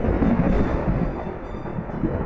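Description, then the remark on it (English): A deep, continuous rumble of thunder from an incoming storm rolls steadily for a couple of seconds, loud and low-heavy, with no voices over it. “Oh dear, there must be a storm coming in.”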